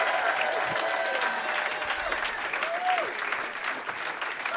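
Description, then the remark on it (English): Sustained applause from an audience fills the whole stretch, a dense, steady wash of clapping with a few faint whistles or cheers rising above it. “Please, one more like round that. Of applause.”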